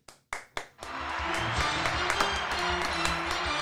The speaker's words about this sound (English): And guys, let's give ourselves a little round of applause, shall we?